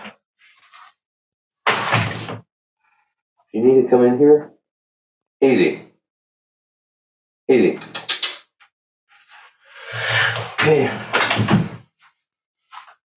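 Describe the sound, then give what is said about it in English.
A male cat gives a short meow at a door, between bursts of a person talking, with some clattering and door-like knocks around it. “Did you hear him? Yeah, meow, meow.”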